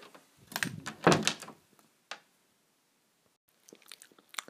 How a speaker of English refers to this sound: My absolute favourite, closing door.